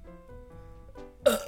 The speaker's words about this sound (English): I burped.